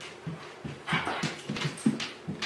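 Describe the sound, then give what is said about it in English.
A dog named Bull whimpers in somebody's house in a steady series of short, soft whines and breathy pants repeating every fraction of a second, of moderate loudness, with other dogs playing on the wood floor in the background and no one talking. “There are other dogs playing in the background on the wood floor.”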